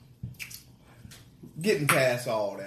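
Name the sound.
sipping a drink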